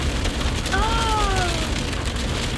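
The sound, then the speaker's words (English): Steady, not very heavy rain patters on a car pulled over to the side of the road, a dense continuous hiss for the whole stretch, with a brief high, wavering tonal sound, like a meow or whine, rising over it partway through. “It's like, bruh, it ain't even raining that hard for you to just be pulling to the side.”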